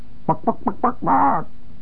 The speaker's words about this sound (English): All I suggest that if you think it's simple, you take your friend the tape recorder out and you do a little chicken clucking into that tape recorder mic and then play it back and see whether you really feel that it sounds like a chicken.